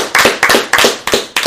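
Loud, sharp hand claps land in a loose, fairly steady rhythm, about five strong bursts with quicker claps blurring between them, like a few people applauding together. No one speaks.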